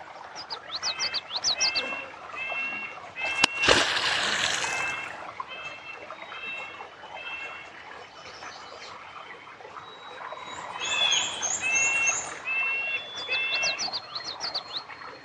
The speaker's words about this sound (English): Just listen to how much birdsong there is here, and that's partly because of this beaver dam.